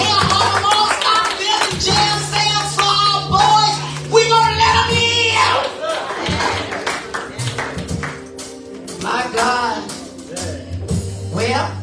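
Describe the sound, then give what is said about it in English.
An audience claps steadily, giving God a hand clap of praise, over sustained music with a deep bass line, the dense hand clapping running loud and continuous throughout, with a few voices mixed in. “Can we just give God a hand clap of praise?”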